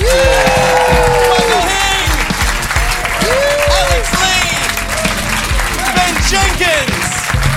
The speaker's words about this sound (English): Thank you! Big hand of applause for